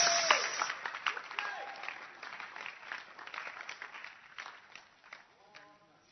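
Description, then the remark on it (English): An audience claps steadily, a dense patter of many hands that gradually thins out, with a few raised voices calling out over it. “And I'm saying it again, just in case, because of the clapping, you didn't hear, and so on.”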